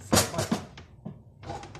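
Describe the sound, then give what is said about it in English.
A couple of knocking, clattering thuds, like a door being banged shut, followed by a pause and a burst of hissy, rustling noise. “I just fuck up the door on this.”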